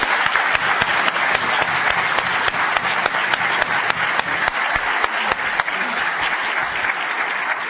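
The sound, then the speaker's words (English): Sustained audience applause for a panel, a dense, crackling wash of many hands clapping at once, holding steady and fairly loud for several seconds without letting up. “I did want to say let's have a big round of applause for this great panel.”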